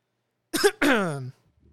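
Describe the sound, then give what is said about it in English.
A single loud cough: a sharp burst that runs into a longer, voiced, gravelly tail, with no one talking around it. “Hold on, people. I need to take one good cough here.”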